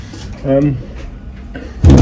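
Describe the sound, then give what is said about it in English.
A slightly broken door in a house creaks open with a short, strained groan, then a louder knock as it bumps shut, with faint background noise between. “The door's a little bit broken as well.”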